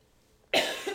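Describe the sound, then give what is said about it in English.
A person gives a single sharp cough from a tickle in the throat, bursting in after a moment of near silence, loud, with a rough, breathy tail that trails off. No talking. “Oh my goodness, my first podcast cough.”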